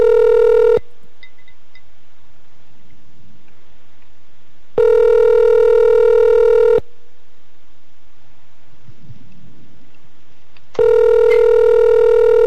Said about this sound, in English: That's me calling, DT. Okay. Who's calling? I'm calling you, your cell phone.